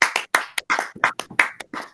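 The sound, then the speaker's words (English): A small group claps together in quick, uneven bursts, with sharp, bright slaps overlapping at a moderate level for about two seconds. No voices are heard. “You're going to make us clap.”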